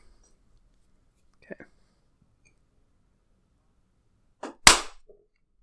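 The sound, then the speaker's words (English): A single sharp, loud hand clap, made at the start of a recording, rings out near the end, a crisp burst that dies away quickly, preceded by a few faint, soft rustles in otherwise quiet surroundings. “Let's do a 10.is clap right at the top.”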